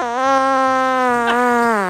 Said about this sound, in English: That's true. That's my fart register.